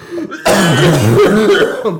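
A loud fit of heavy, raspy coughing after smoking wax, starting after a short quieter moment and carrying on for over a second, hoarse and strained, with throat-clearing sounds at the edges.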